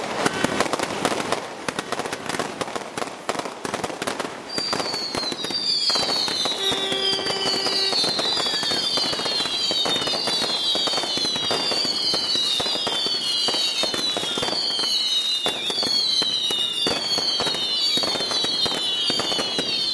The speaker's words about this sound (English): That's show number 90 locked in. Let off the fireworks.